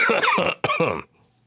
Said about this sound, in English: I still got a wicked cough. All right. So if I remember to hit mute, you will not hear it.